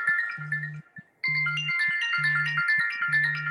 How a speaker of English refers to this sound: Okay, somebody's phone is going off. It's me. Who's ringing?